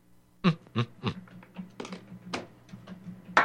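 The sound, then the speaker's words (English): Irregular typing on a computer keyboard as someone looks something up on Amazon, a quick run of sharp clicks with a few louder key strikes standing out, no voices. “And you're typing away.”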